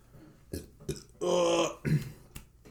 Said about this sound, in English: Oh, sorry, I'm burping.